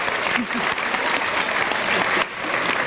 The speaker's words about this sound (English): That was just sort of applause going on randomly.